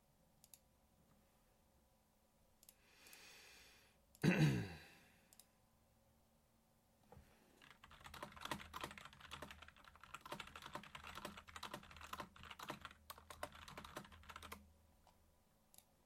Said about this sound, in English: Sorry, audio listeners, you have to deal with me typing away as well.